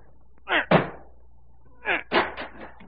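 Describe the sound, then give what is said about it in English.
Heavy, splintering crashes as a heavy chair is rammed into a door panel to break down the door: two hard blows, a pause, then another burst of three or four loud impacts. “Break down the door. Here, this heavy chair will do it.”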